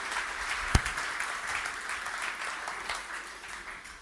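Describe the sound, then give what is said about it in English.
A crowd claps steadily for about four seconds in appreciation of the creative team, a dense patter of many hands with one sharper, louder clap near the start, then a fairly even wash that tapers only slightly. “Why don't we give them a clap?”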